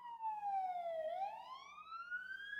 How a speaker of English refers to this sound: Wow, first siren on the pod. It feels like I'm in a video game because I've got the headphones on and it really... I hope they're okay.